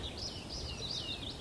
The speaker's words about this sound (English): You hear the tree pipits... in England, the population has crashed really, really badly, 70 or 80%. So you're just not hearing them in the usual places that you should do, the sort of commons of Surrey and the, you know, places like Hampstead Heath